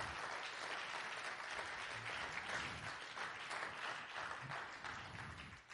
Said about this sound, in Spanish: Da gloria a Dios. Denle una ofrenda de palmas al Señor.